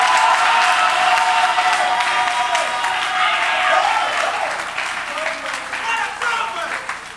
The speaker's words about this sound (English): And give Jesus a clap of offering in the house.